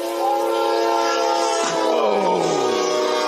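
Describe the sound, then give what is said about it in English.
A train horn blares loud in one sustained, chord-like blast, its pitch sliding downward midway as the train rushes past, with no voices heard. “you hear the train sees them before they see the train, and you hear the train engine going like”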